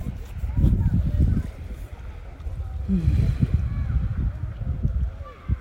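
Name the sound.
wind blowing into microphone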